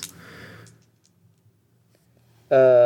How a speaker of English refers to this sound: Yeah, let's have a roll. One dice or two? I'm going to add my insight either way. Yeah, we'll go with two.